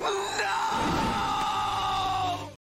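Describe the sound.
A man lets out a long, loud, strained scream lasting over two seconds, harsh and sustained with a rising, raw edge before cutting off abruptly.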